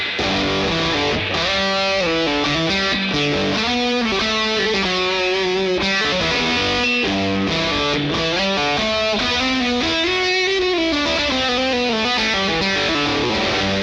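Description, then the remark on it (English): Electric guitar, a Stratocaster with FSC 59 wound pickups, played through a Harmonic Jerculator fuzz pedal and a Surfy Bare Metal spring reverb into an amp, a thick, buzzing distorted tone carrying a continuous melodic line of sustained notes, loud with no talking. “I'm going to kick in the harmonic jerculator.”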